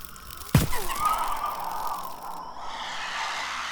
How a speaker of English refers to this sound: Oh no. I know that scream. Banshee.